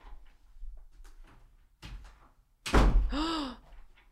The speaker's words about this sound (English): The heavy front door closes behind you. That was a bad door sound. Hold on. The heavy front door closes behind you.